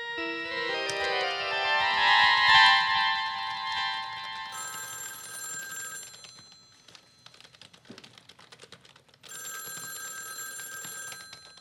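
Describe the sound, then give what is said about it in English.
A telephone rings loudly, a bright electronic trill that sounds in long bursts with a brief pause between them, broken by faint tapping like keys being typed. Nobody speaks. “Must we have this conversation every time the phone rings?”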